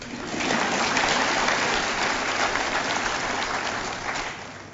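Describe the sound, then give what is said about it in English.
An audience of students, parents and guests applauds steadily for about five seconds, a dense wash of many hands clapping at once, swelling quickly and then holding at a fairly even level before easing slightly at the end. “You may clap.”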